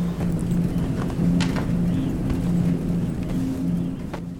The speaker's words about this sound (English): And that, of course, the noise in the background, really the foreground that we're hearing, mm-hmm. is the dryer. It's mm-hmm. the laundromat.